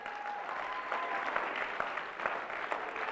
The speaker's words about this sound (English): Someone shout amen and say hallelujah. Someone give the Lord a clap this morning.